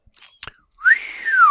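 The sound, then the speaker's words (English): A person whistles one sustained, fairly loud note that swoops up and then slowly glides down, after a couple of soft clicks and a breathy noise. “I won't whistle into the microphone.”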